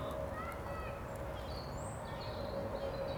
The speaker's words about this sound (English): Little bird joined in with you. It did, yes.